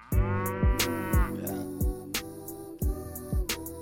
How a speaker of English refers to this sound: Where did the moo come from? The cow, dude.